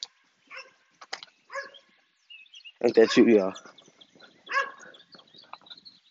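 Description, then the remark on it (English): A dog lets out a loud burst of barking and yelping midway through, with short snatches of a person talking before and after. “But if two of them, though, it's always the good one, and it's always the one that want to bark at you.”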